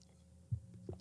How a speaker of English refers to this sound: And, sorry for swallowing into your ears all the time.